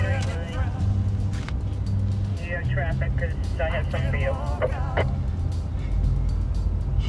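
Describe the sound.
A steady low rumble of road traffic runs throughout, loud and close, with voices and tonal vocal sounds layered over the engine drone.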